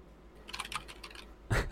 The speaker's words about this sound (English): It's blinking. Typing can be heard.